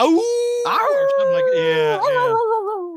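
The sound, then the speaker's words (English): Someone imitates the werewolf howl Man-Wolf made on the old Power Records record: one loud, sustained wail about three seconds long, its pitch wavering and sliding upward, then dipping near the end, with no other sounds. “What sound did he make when they ripped the thing off?”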